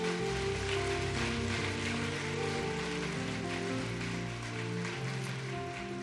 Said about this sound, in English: Come on, Inspire Church. Let's give them a warm hand clap.